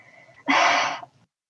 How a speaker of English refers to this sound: That should serve to quell your cough, I think. And if it does not, there are other remedies forthcoming.